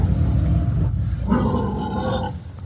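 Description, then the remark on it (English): A pig grunts loudly and roughly in one continuous deep rumble that rises into a harsher, squealing snort near the end, with no talking. “That's a pig.”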